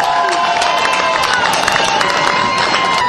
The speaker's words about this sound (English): So, if you guys give her a big round of applause